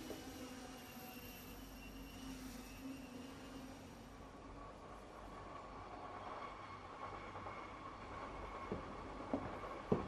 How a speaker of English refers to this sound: Train leaves in 2 minutes.